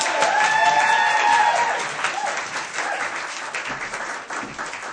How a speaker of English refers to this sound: Okay, and the last performer from this act of stand-up tragedy is a writer, filmmaker and London bus tour guide who regularly tells stories at Spark London. So put your hands together